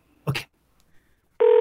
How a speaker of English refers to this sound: Let me just pick up the old Radio 680 telephone here, and we're just gonna dial up there.